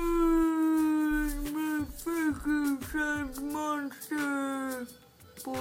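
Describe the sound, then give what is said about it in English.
A person sings a birthday song in a long, wavering, hooting voice, mimicking whale song with sustained gliding tones that swoop up and down in pitch, fairly loud. “me singing happy birthday to you in a whale song.”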